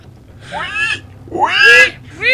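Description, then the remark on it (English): Three shrill, rising squeals like a pig's, loud, the middle one longest and most intense, with short gaps between them over a low background rumble. “Squeal like a pig, boy.”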